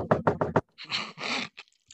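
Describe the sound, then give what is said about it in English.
Four quick, evenly spaced thuds of someone banging on a desk, followed by a couple of heavy breathy exhales and then near silence. “That's why I was banging on my desk just now.”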